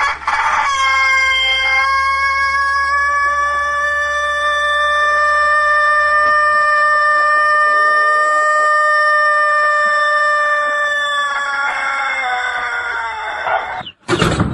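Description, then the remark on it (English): A rooster gives its morning wake-up crow, loud, stretching a single note for over ten seconds with a steady, harmonic tone before it abruptly cuts off as the bird passes out, followed by a brief sharp squawk. “But this rooster goes overboard with his morning wake-up call because he holds this note like he's an opera singer for so long that he passes out every single morning when he crows.”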